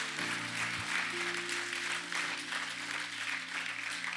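A crowd applauds steadily, the clapping dense and sustained for several seconds, with a low, droning musical hum running underneath.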